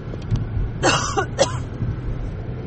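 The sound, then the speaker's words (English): Two short, harsh coughs from a person with allergies, about half a second apart, over a steady low rumble of background noise, like an engine or wind. “I'm coughing.”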